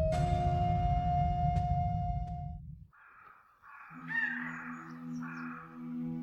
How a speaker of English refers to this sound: The wood birds carol unafraid, for no man hath done them wrong, while Arthur's knights pass down the glade, and each, as he rides along, wending his way by sun and shade, beguileth the hour with a song.